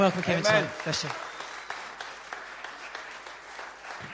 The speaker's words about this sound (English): So we're delighted that they're with us. So let's give them a big round of applause and we welcome them.